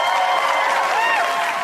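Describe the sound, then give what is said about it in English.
Steady, dense applause from a crowd, a continuous wash of clapping with a few whistles and cheers rising and falling over it, holding at an even loudness throughout. “Can I stop and clap real quick”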